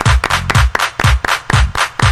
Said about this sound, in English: Clap your hands.